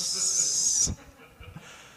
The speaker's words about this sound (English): Oh, that's your soda. Sorry. That's the problem, is I'm not discreet. It's like I hear a hissing. It sounded like one of those old-fashioned bombs.